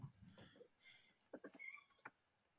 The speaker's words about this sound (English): Is that a cat? That was my famous cat, yeah.